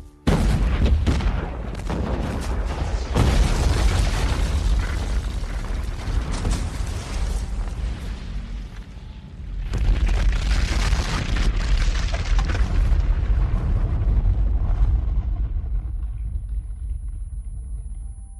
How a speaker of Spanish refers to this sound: Los soldados intentaron escapar de su muerte inminente y sin darse cuenta, fueron los primeros en recibir la primera oleada de explosiones a su paso.